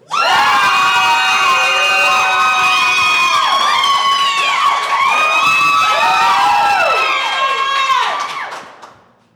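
An audience roars with cheers, high whoops and shrieks over applause for a contestant during applause voting for the winner of the 2019 All-Star Pod Slam Rumble, loud and unbroken for about eight seconds before quickly dying away.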